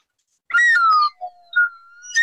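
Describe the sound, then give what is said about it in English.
A whistle sound effect plays a few short, bright tones that slide up and down in pitch, with brief dips between notes. It is fairly loud and alone, with no talking. “So I'm going to have to substitute for a whistle that doesn't sound like a winner, but it is a whistle nonetheless.”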